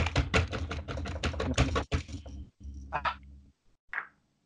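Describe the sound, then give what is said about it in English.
Rapid, dense clatter of keys on a computer keyboard for about two seconds, fairly loud, followed by a few scattered softer clicks and noises before falling silent. “I hear typing. Not as furiously as I do it.”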